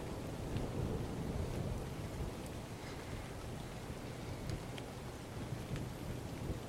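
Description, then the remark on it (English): Heavy rain pours steadily, a dense, continuous hiss with a deep rumbling undertone and occasional faint splatters, with no voices over it. “It's pouring rain as the five of you stare at this new automaton.”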